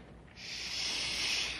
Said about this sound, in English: I thought I heard something. Like a window sliding open.